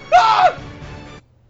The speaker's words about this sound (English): But the question for today is, how many times have I filled in for one of you three? Say your answer after the scream.